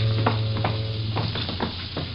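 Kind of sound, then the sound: nature, rain falling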